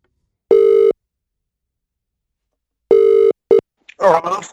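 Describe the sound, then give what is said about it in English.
An outgoing phone call rings: two steady electronic ringback tones a couple of seconds apart, then a brief clipped beep as someone picks up and starts talking. “why don't we just call him up? He's got a phone. We got a phone.”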